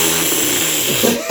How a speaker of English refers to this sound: I don't know if they could hear you sipping. Do I sound like a vacuum? That was him taking a drink.